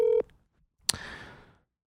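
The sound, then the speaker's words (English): A single short electronic phone keypad beep sounds while phoning a friend, then after a brief pause a sharp click with a quick fading rustle. No one speaks. “He just called me too, so I'm going to tell him that he's on the podcast.”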